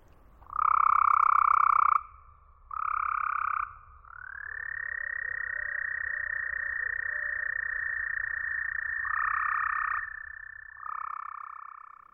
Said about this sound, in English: But let's listen to the same recording after it's been equalized to simulate what the toads hear.